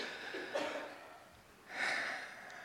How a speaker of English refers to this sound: Let's just do that for a moment. Let's all just take a breath.